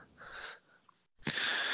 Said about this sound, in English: Sniffles suck.